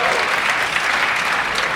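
Steady applause from an audience clapping to show they have heard of the Homo naledi fossil discovery, a dense wash of many hands clapping at once, fairly loud and even throughout the short burst.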